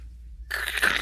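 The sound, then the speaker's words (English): A sudden burst of crisp crunching as popcorn is bitten and chewed, starting after a brief quiet moment and continuing loudly to the end. “Crunchy.”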